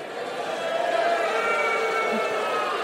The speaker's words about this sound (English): Yeah, interesting. A lot of guys booing. Interesting.